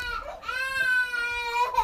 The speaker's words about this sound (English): Come on. No need for screaming. Tired babe.